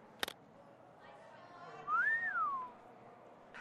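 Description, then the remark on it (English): A man gives a single wolf whistle at women passing by, sliding up and then falling away, clear over a low background hum, with a sharp click just before. “1 minute, you're all stressed about some clandestine operation, and the next you're whistling at the ladies passing by.”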